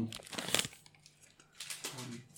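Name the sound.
dice being rolled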